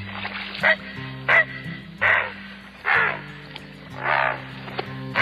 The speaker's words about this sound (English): The bird is Ardea herodias, better known as the Great Blue Heron.